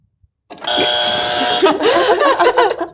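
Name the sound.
game buzzer sounding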